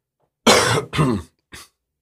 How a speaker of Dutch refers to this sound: Even hoesten hoor.